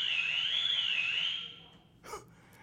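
A shrill electronic alarm, set off by a loud hand clap, wails steadily at a high pitch, its tone slowly wavering up and down, then cuts off and is followed by a brief sharp burst of noise.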